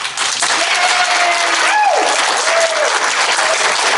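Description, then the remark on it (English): The audience at a live edition of the show Cult Following, by Cult Classics AZ in Tempe, applauds steadily: a dense wash of many hands clapping at an even loudness for the whole stretch, with a few faint whoops and cheers rising through it. “Clap now.”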